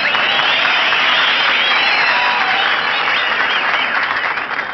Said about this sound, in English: Oh, say, you're really popular here, Mary. You got a nice hand. That ain't all they're applauding, brother.